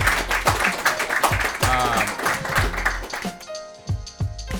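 An audience applauds with dense, steady clapping over a rhythmic thumping beat and tonal music. The clapping thins out near the end as the music carries on.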